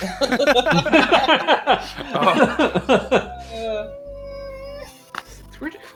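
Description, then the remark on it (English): A voice imitates a giant metal robot's small servo whine: a quick run of chattering, mewing vocal bursts, then a thin, steady, high whine held for over a second, ending with a short breathy burst. “What would a giant metal robot making a small whine sound like?”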